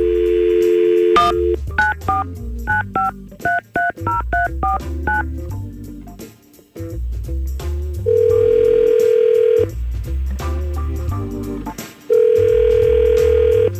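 On the Y100 radio show, a rapid string of telephone keypad tones dials a listener's number, then two long ringback tones sound with a pause between them, over a steady low musical bed.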